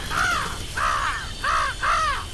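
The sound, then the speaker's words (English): A crow caws four times in a steady rhythm, each call harsh and loud, with brief pauses between them and no voices present. “Come on, Mr. Crow, please. Just a little bit, please.”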